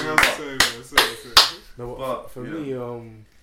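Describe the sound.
Four sharp hand claps ring out over about a second and a half, loud and evenly spaced, with a voice talking beneath them; speech continues alone afterward.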